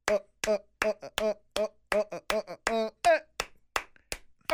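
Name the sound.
hand clapping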